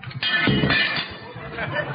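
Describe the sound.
Glass shattered by a shot from an 1835 elephant-shooting musket by Pot and Pot of Bond Street breaks in a loud, bright crash, followed by scattered tinkling and clinking shards, with murmuring voices underneath.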